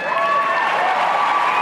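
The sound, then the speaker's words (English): An audience applauding, a dense, steady wash of clapping at a constant loud level, with some whooping or cheering tones mixed into the crowd noise. “What an applause.”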